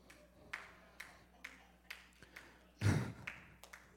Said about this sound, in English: That is the longest slow clap in the history.